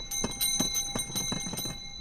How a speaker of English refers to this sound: There's probably nothing that says summer quite like this. Yep, it's the season when these ice cream cart bells ring out in Chicago sidewalks, parks, and beaches.